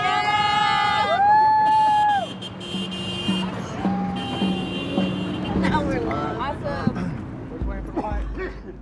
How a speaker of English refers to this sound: The sun low, a small convoy of support cars encourages us with honking and yelling as we finish out the day.